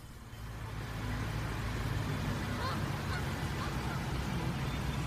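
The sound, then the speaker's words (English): A gaggle of geese honk faintly and intermittently as they walk across a street, against a steady, loud rumble of outdoor street noise, with a murmur of voices mixed in. “Oh, those are geese? So it's a gaggle of geese.”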